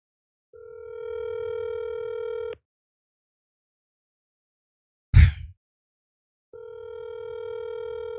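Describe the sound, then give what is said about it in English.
A steady telephone dial tone during an outgoing phone call hums for about two seconds, cuts off, then a brief sharp click or thump sounds before the same continuous tone returns. No one speaks. “Let's give him a call.”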